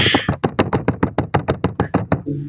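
Loud keyboard clacking: a quick, steady run of about sixteen sharp clicks, roughly six per second, with no talking, ending in a faint low hum.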